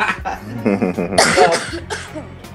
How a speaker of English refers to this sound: I'm having a little coughing fit right now.